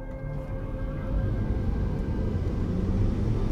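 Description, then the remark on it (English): Steady low rumble of a car driving through city traffic toward downtown Los Angeles, past skyscrapers and hotels, a continuous engine and road drone with faint tonal hum, constant, no voices. “Skyscrapers and hotels blur past my car.”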